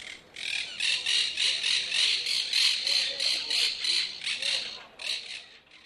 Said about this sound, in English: that monk parakeet that I got the noise from was from Barcelona